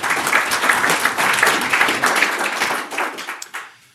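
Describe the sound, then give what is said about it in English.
An audience breaks into a round of applause, a dense wash of many hands clapping at a steady loud level before it thins into scattered claps and fades out. “I don't know if there's a round of applause, but yeah.”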